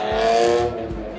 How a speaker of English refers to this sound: I'm outside and there's these cars just whizzing by.